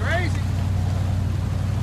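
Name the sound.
boat engine revving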